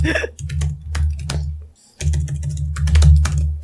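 Fast, uneven clacking of keys on a computer keyboard, sharp clicks in quick bursts over a low steady hum, with a short pause partway through before the typing resumes.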